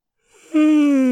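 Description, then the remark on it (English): A loud yawn into a microphone: a breathy intake swells into a long, steady voiced groan that holds its pitch and stays strong until it cuts off. “Don't yawn into the microphone.”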